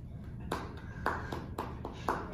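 Sparse, quiet applause from what sounds like a single person, with about four distinct claps spaced roughly half a second apart over a faint background murmur.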